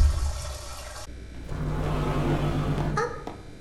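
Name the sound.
water filling a tank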